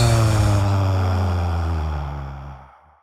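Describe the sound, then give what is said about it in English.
A long, audible exhale through the mouth during a guided breathing exercise, breathy with a low voiced hum, holding steady for about two seconds before tapering off into silence, with no talking. “Exhale with an audible sound for 4 seconds.”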